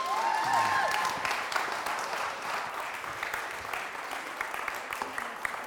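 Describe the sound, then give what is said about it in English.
A church audience breaks into sustained applause welcoming speaker Carlos Bertrand, a dense, steady wash of many hands clapping that holds at an even level for several seconds, with a brief whistle-like tone near the start. “Let's give Carlos Bertrand a big welcome.”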